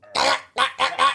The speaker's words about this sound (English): What the fuck? Bird.